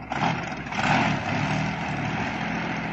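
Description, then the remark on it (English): An engine sputters and strains as someone tries to start it while snow begins to fall, its rough, heavy drone running steadily throughout with a brief surge early on. It sounds fairly loud, with no voices. “If the engine's broken down and we're stranded up here, I think I'm going to throw a fit of hysterics.”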